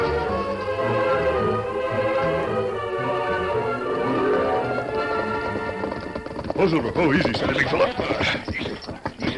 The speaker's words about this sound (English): Roy Lyman heard horses galloping in his direction from somewhere behind the bend in the road